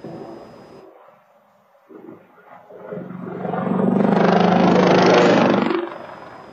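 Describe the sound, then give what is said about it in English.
A military helicopter crashing over a neighborhood in Huntsville, Alabama, during a National Guard training flight, recorded by a Nest home camera: roaring engine and rotor noise swells over a few seconds into a loud, rumbling crescendo with a low droning hum, then abruptly drops away near the end. No one speaks. “New this morning, a Nest camera captures the moment a military helicopter went down over an Alabama neighborhood, killing two people.”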